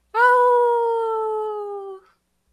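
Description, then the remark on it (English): A single lone wolf howl, one long sustained note that slowly slides downward in pitch over about two seconds, loud and clear with no other sounds around it. “There is my lone wolf howl for the day.”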